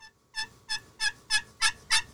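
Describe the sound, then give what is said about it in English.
A broken slate turkey call, chipped and cracked in half (a Primos Jackpot), plays a steady run of six raspy, evenly spaced yelps, each note bright and clear, rising slightly in loudness toward the end, with no talking over it. “I broke my slate. It's all chipped up, so it might sound.”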